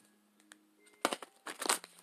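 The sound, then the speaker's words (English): A deck of oracle cards being shuffled: a few quiet taps, then two bursts of crisp, papery riffling in the second half, with no one speaking. “Oracle cards. Right ahead, went ahead and pre-shuffled, but I'm going to go ahead and do it again.”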